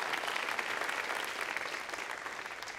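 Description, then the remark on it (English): A crowd applauds steadily, a dense wash of many hands clapping at an even, loud level, with faint cheering mixed in, and no one speaking over it. “You can cheer.”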